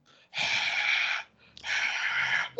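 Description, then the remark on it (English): Heavy breathing: two long, loud, rasping breaths of nearly a second each, separated by a short pause, with no talking. “Heavy breathing has commenced.”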